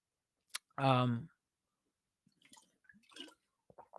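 A quiet sip of water with soft wet mouth clicks and small swallowing sounds, plus a short voiced sigh near the start. No speech.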